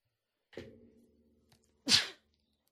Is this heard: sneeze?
yes